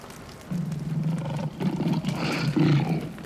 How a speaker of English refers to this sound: Young one, the lion has caught up with us. Run!